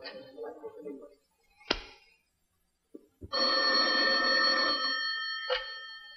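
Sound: telephone ringing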